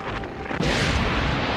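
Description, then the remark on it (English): A loud explosion in an anime scene erupts after a brief lead-in, its blast swelling into a dense, sustained roar and rumble that fills the rest of the moment, with no voices. “There were legs on those explosions.”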